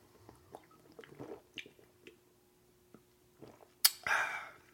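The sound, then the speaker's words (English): Sipping and swallowing Voodoo Ranger Imperial IPA beer, with small wet mouth noises and a short gulp, ending in a louder exhale or swallow. “I'm going to take a quick little drink break. I'm drinking a Voodoo Ranger. It's an Imperial IPA.”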